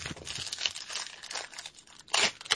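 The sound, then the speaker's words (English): A 1990 Pro Set Yo! MTV Raps trading card pack wrapper being torn open, with crinkly, crackling plastic rustles and a brighter ripping burst near the end, no one speaking. “I'm gonna open a pack now while you're talking.”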